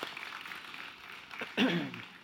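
A round of applause from a group, a steady, moderately soft patter of many hands clapping, with a brief voiced cheer or call rising over it near the end.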